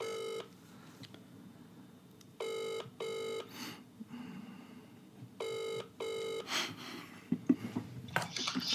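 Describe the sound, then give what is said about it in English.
An outgoing phone call's ringing tone pulses in repeated double rings with pauses between, heard down the line over a low background hiss, with some faint clattering near the end; the call is about a piano, referred by Shackleford Pianos. “And I hope it goes to answer phone because then I'll leave the message.”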